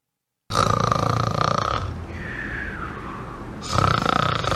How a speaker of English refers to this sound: Yes, the snore at number 4. I suspect that's more to do with people's marital problems than anything else.